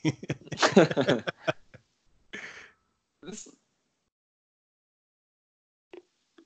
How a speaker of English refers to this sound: He's just breathing heavy from the fact that he's been yelling at this thing for like ever.